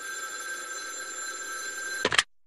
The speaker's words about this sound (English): And today, hold on, my phone's ringing. Hang on, hang on.